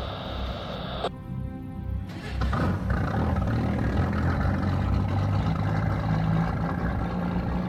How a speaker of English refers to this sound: Just as the engines turned over and the boat started to move